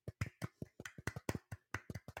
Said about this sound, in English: Right. Let's give him a golfer's clap,